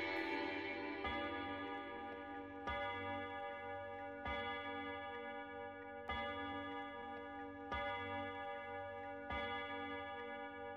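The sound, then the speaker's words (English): A clock chime strikes eleven, evenly spaced about a second and a half apart, each resonant bell tone ringing on into the next; no one speaks. “When the clock struck 11, this domestic ball broke up.”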